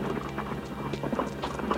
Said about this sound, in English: The smooth cobblestones, worn with weather and age, sparkled dully in the lights. Not far away, a lone horse and wagon trotted through the town square, while a handful of townsfolk walked the streets to unknown destinations.